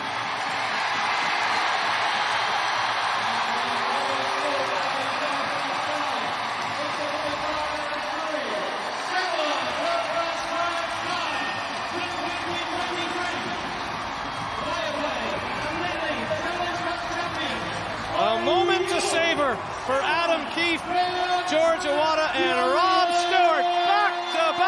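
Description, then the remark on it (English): A big ice hockey arena crowd roars and cheers continuously for about twenty-five seconds as the last ten seconds of the game run out and Belfast win the 2023 Viaplay Elite Challenge Cup. It is a dense wall of voices with whoops and shouts that swell louder toward the end, with no clear speech over it. “We'll let the crowd take you home, folks.”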